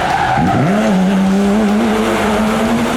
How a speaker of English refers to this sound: As soon as the caddy's tires hit the well-manicured lawn, Elvis slams on the brakes, putting it into a power slide that chews up grass and throws dirt everywhere.